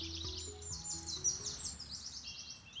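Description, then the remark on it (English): Birds chirp and sing continuously in a bright, busy chorus of quick, high trills and tweets, steady throughout, with a low hum of background underneath and no talking. “There are so many beautiful birds and grass is so green.”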